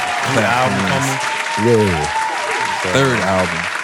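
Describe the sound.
A crowd claps steadily for about four seconds, a dense wash of applause with loud voices cheering and whooping over it in three rising bursts.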